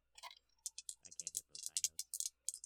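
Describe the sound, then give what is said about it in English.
A player's two 'magic dice', named Bendel and Harmonium, clatter and tumble across a hard surface for an insight roll, in a quick, irregular run of sharp clicks, with a brief low voice murmuring underneath partway through. “Pulling out my magic dice, do-do-do-do.”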